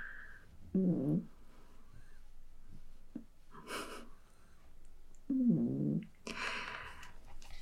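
A cat makes two short, low purring trills a few seconds apart, with soft rustling and shuffling of movement in between and after. No one speaks.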